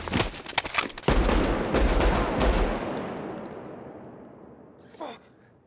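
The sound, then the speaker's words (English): A rapid burst of sharp, loud gunshots in a film scene as a man is shot, then one heavier blast, a shot to the head, whose roar rings out and slowly fades over several seconds, ending with a short breathy gasp. “Remember the guy that was still, and then he goes bang, shoots him again in the head just as he's walking off?”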